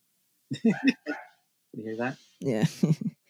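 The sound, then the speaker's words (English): A dog barks in a few short clustered bursts, then lets out a longer drawn-out whine before barking again, fairly loud. “Also, say hi to your dog for me.”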